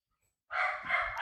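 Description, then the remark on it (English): A dog named Blue gives one loud, piercing, drawn-out bark, breaking suddenly out of silence and carrying on for nearly a second with no voices around it. “I've been trying to teach my dog English, and it's not working.”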